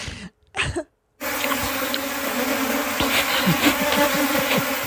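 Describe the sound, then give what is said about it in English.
A dense, steady buzzing of many live bees on a honeycomb that a woman is eating, droning continuously for several seconds after a couple of brief, muffled bumps at the start. “She's eating a honeycomb with live Have you ever had bees.”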